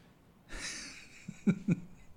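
A man yawns up close: a long, airy breath in, then two short voiced groans as it trails off, with no talking around it.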